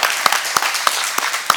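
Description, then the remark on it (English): A crowd claps steadily, a dense wash of many hands with a few sharper claps standing out at a regular pace, loud throughout. “It's okay to clap.”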